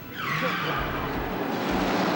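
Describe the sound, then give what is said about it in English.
A car roars past with a loud, sustained tire squeal as it turns, the screech sweeping in pitch over a steady engine rumble, with no talking. “That was just lucky that car drove by right as he turned the wheel.”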